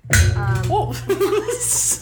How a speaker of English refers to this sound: Sorry. Punch the table, why don't you? That was a new noise added in for sound. That was not the chair. That was dramatic effect.